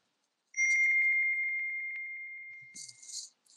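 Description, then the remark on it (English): A computer notification chime from a Mac rings out as a rapid, warbling trill on one steady high pitch, gradually fading over about three seconds, followed by a brief hissy rustle. “Big ringer. Dude, huge ringer guy over here. So I'm sorry. Yeah, huge. Yeah. Silent. It's on my Mac.”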